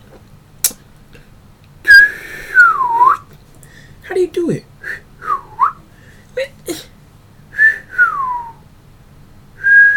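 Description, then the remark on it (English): Several sharp wolf whistles given as a catcall, each a bright held note that swoops downward, repeated with pauses and short bursts of speech in between. “That's how you cat call.”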